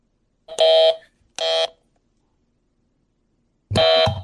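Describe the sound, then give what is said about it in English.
A loud, harsh game-show buzzer blares three times: two quick bursts close together, a pause of about two seconds, then a third buzz, with no talking. “I got my buzzer.”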